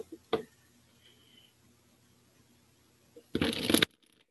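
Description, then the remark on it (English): A quick snap of cards near 0.3 seconds, a quiet stretch, then a loud, dense riffle-shuffle burst of a deck around 3.4 to 3.8 seconds, with no talking. “That was a perfect shuffle.”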